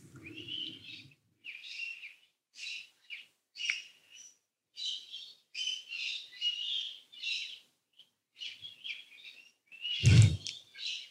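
Birds chirp and trill in quick, repeated bursts on a breezy summer afternoon at the end of summer, bright, with a brief low rumble at the start and a sharp thump near the end. No one speaks.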